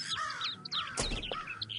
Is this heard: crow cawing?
yes